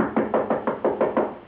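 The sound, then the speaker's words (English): Knuckles rap a man's door in a quick, steady run of about eight firm, evenly spaced knocks, made by someone with a drawn gun standing to one side of the doorframe, with no voices or other sounds around them. “Nonetheless, after entering the building, before knocking on his door, from well at one side of the doorframe, I drew my gun.”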